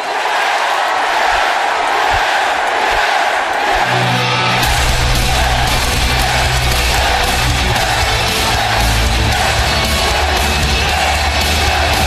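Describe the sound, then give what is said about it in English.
A packed WWE Raw arena crowd roars loudly, then settles into a rhythmic, unison chant of "yes" for Daniel Bryan, with steady repeated pulses over a constant wash of cheering and yelling. “So if I could just get one last yes chant, I would really appreciate it.”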